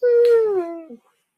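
A single drawn-out dog whimper, a high, tonal whine that slowly falls in pitch over about a second before breaking off, fairly loud with no talking.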